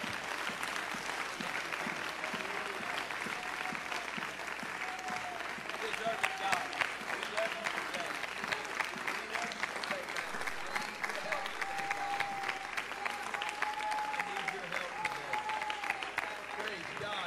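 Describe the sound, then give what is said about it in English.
A church audience gives God a hand clap of praise for his word, clapping steadily for about seventeen seconds, a dense, even wash of hand claps with some faint voices calling out beneath it. “I tell you what would make me feel really good right now is if you would give our great God a hand clap of praise for his word.”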